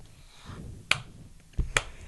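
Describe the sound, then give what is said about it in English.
Two sharp, crisp hand claps land slowly, almost a second apart, in a sarcastic slow-clap rhythm over a low rumbling background, with no voices. “So this is when you hear a slow clap.”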